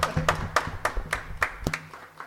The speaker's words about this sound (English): But we also have time for our third guest. Comedian Beck is here. Would you like to come up to the stage? A round of applause.